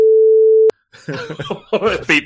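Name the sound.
censor beep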